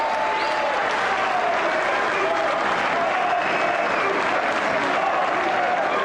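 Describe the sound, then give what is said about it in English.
A large arena crowd at a wrestling match, everybody on their feet after Mysterio kicked out of a pin, applauds loudly and steadily, a dense wash of clapping with cheering voices mixed in throughout, sustained without a break. “Everybody on their feet clapping.”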